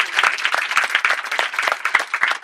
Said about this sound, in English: Big round of applause for all our pitches, you did really well.